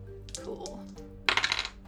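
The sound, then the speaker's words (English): Two dice are rolled in a tabletop game, clattering and tumbling across a hard surface, a brief rattling roll followed by a burst of quick clicks as they bounce and settle. “Okay, yeah, so roll to see if you succeed. It's lasers. You have your pistol in your hand, so I'd say 2 dice.”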